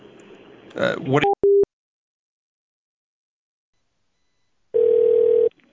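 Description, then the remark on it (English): A telephone busy signal over the line, after a caller fails to hang up: a few short electronic beeps, a long silent gap, then a steady buzzing tone lasting about a second, sounding clear. “Our hang up button is broken though. Yeah, you do need to hang up the phone, sir.”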